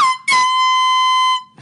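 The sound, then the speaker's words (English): A loud small air horn gives a quick short toot, then a long sustained blast lasting over a second, with a brassy, steady tone and no voices. “Definitely didn't have the air horn before.”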